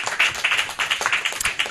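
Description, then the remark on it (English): An audience applauds to thank the speakers at the close of a session, with dense, overlapping claps forming a steady crackling patter of bright hand slaps, fairly loud and sustained without any talking. “Can we thank our speakers with a round of applause?”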